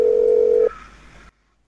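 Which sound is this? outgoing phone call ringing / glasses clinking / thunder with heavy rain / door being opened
outgoing phone call ringing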